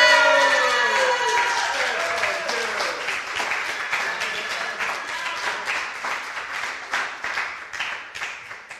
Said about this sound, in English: So please welcome her to the stage with big applause. Yeah!